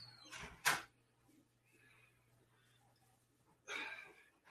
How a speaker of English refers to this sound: Here he comes. I hear the door.